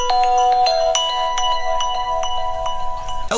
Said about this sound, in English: I'm terribly sorry. This is awfully embarrassing. My phone's just gone off. I'm actually learning Italian through this application on my phone.